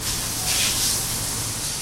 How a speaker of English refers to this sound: hand-sanding the cherry wood sides of a guitar body. We file it down. And then we go over with a fine file to make it real smooth.